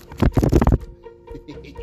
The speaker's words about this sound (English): Flip through these pages. Hold on. Listen.